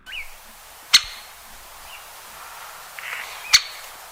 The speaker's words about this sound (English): It's either a capuchin, a hen, a hare, or a woodpecker. It was a woody woodpecker on that one.